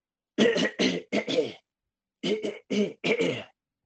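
Loud throat clearing in two groups of three short, gruff bursts separated by a pause, the voice imitating the pounding rhythm of the Terminator theme.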